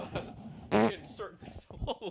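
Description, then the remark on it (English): Amid casual speech, a single loud, buzzy raspberry blown with the lips and tongue into a microphone imitates a fart, lasting about a quarter second before the talking resumes. “I can't believe you just farted into the mic.”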